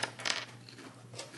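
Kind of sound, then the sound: household object, dice rolling on table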